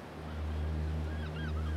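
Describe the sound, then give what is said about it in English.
Ocean waves wash in a steady, continuous roar on an overcast Sunday that is growing dark fast, with a low rumbling hum underneath and a few faint bird calls chirping near the end. “My plan was to just enjoy the waves and figure out what to spend this month's Audible credit on.”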